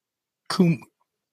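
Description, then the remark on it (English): A single quick sneeze: a sharp breathy burst that turns into a brief voiced snort, then silence. “Bless you.”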